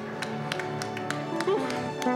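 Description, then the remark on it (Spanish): A crowd claps hands for the Lord after a prayer, in a steady, even rhythm, sharp claps repeating about every third of a second, over sustained musical tones and a singing or speaking voice. “Dele fuerte palmas al Señor, mi amado hermano.”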